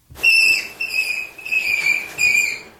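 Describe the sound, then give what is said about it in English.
A rabbit's distress scream: a series of about four piercing, high-pitched shrieks, loud, each held briefly with barely a pause between them, and no other sounds around. “All right, we're going to save people a Google search and hear some screams from Here is a Rabbit.”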